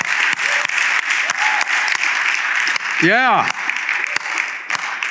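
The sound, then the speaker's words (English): A crowd claps steadily and densely for several seconds, many hands blending into a continuous patter, with a brief rising-and-falling whoop of a cheer partway through. “So when we clap, man, we clap.”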